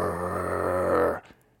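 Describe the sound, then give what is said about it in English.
A person imitates the growl of a huge pit bull German Shepherd mix dog that was collared and chained: a low, rough, sustained rumble lasting just over a second, steady and fairly loud, then cutting off abruptly into near silence. “And he was just staring at me, growling.”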